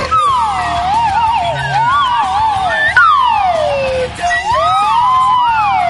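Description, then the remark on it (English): Slide whistles swoop up and down in loud, overlapping glides, two lines of pitch weaving around each other in rising and falling sweeps with no one talking. “Wait a minute, slime whistle.”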